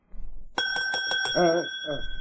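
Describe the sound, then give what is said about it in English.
A bright bell on a battered shop counter rings sharply once and sustains a clear, ringing tone, with a person speaking over it as it fades. “There was a bell on the counter.”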